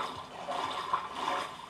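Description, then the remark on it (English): Continuous splashing and sloshing of shallow water as people wade through it while hiking through a mangrove swamp, with a few slightly louder surges and no voices. “If you can hear that splashing, we're... splashing our way through shallow water.”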